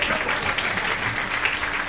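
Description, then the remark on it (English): A crowd applauds steadily as a woman runs away at the end of a show, dense overlapping clapping forming a loud, continuous wash of sound with no pauses, sustained at an even level for the whole two seconds. “Let's hear it for that woman as she runs away.”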